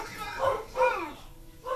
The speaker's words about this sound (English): Sorry, guys. Our dogs are barking at neighbors.